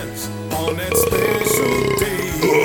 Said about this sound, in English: I forgot how much beer makes me burp. I really can't drink too much of this.